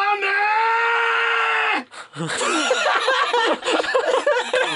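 A man lets out a loud, anime-style charging scream, holding one strained, steady pitch for about two seconds before it cuts off. A short pause follows, then bursts of laughter.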